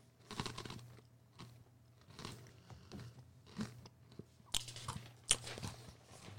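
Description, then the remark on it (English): Crunching on a pretzel: a series of sharp, dry crackling bites and chews in an irregular rhythm, with a couple of louder snaps near the end over a low steady hum. “Eat my pretzel, dog.”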